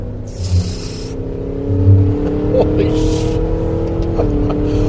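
A 700-horsepower SUV on all-season tires accelerates hard in the middle of winter, its steady throaty roar building a little louder after the first couple of seconds and holding strong under bursts of hiss and road noise.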